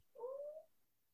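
A sleeping dog lets out one short, high-pitched squeak, a thin whining tone that holds for about half a second and fades. It is fairly soft, with no talking around it.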